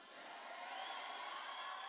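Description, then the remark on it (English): A church audience shouts and cheers to Jesus together in a sustained, steady roar of many voices, filling the space evenly for the full two seconds with no single voice standing out. “Can those sons of God just shake the devil by their shout to Jesus?”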